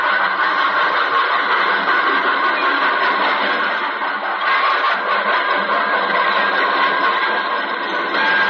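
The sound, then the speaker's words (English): A leave train rolls to a halt in the station at Villefranche on Christmas night, 1918, a loud, steady wash of hissing and rumbling mechanical noise filling the whole stretch, with no voices. “A leave train was just coming to a halt in the station at Villefranche.”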